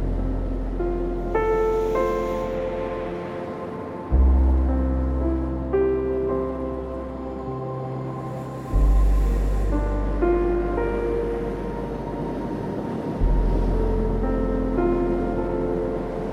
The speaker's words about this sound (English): Down with the soothing rhythm of the waves.